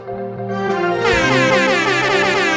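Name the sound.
air horn sound effect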